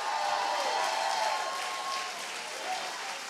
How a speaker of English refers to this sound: Go ahead, take 30 seconds and clap your hands in advance.